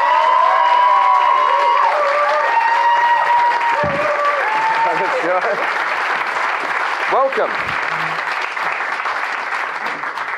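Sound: audience applause and cheers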